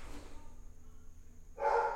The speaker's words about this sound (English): The dogs are driving me crazy. I tried to take a nap today. I never take naps. And it was just like my kids and my wife were at the pool, the town pool, and I just was like, oh, peace, I'm gonna rest. They just barked for 2 hours straight as I laid